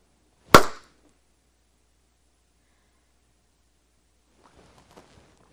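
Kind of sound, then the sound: human body sound, a single hand clap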